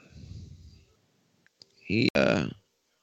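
A bright, loud coin-collect chime rings out for about half a second, preceded by a couple of faint clicks and a low rumble of background murmur.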